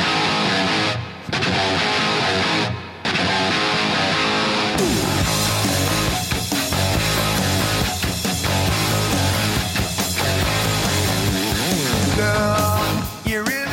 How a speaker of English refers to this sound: So just that opening riff. Yes. Is just amazing.